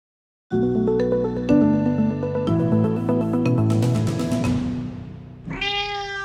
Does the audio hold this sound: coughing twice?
no